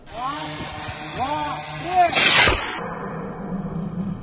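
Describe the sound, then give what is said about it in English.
An air tube launcher on the front line fires a gray paper-and-wood drone carrying explosives into the air once partway through: a sudden loud whoosh of rushing air. Before it come a few rising and falling tonal sweeps, and a low steady hum lingers afterward. “In the video, he puts the gray paper drones on a kind of air tube launcher, and then he fires it into the air, and it just disappears from sight.”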